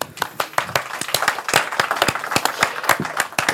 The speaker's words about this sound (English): He completed the world's longest fully unsupported polar journey of all time, which I think actually deserves a round of applause.